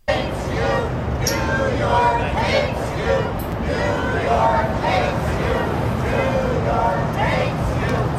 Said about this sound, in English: As his motorcade sped through the city, a crowd was giving him a welcome back. Give a quick listen.